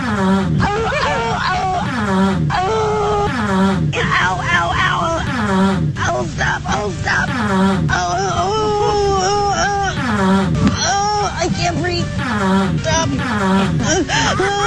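A woman's loud, wailing screams and moans, from a Fox 5 Atlanta clip of a woman falling off a grape-stomping platform, repeat continuously, layered with sputtering fart noises in a chaotic, comedic mix that never lets up.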